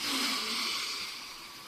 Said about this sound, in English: Sometimes it involves simply breathing. You know, breathe in through your nose.